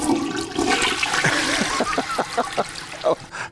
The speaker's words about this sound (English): I remember the first time a toilet flush was heard on television.